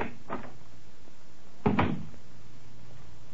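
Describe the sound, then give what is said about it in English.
A heavy door to the Black Museum on the lower ground floor of New Scotland Yard opens: a short click of the latch, then a louder, deeper thud and rattle a moment later, over a faint low hum with no one speaking. “Behind this door”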